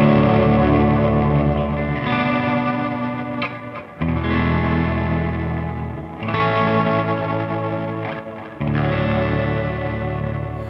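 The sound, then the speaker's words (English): Loud electric guitar chords strummed in sustained phrases, with a gentle wavering modulation and a wash of reverb trailing each chord, a slightly fizzy, overdriven edge throughout, the fizz coming mostly from the amp. “And then a little more subtle, and then with some reverb.”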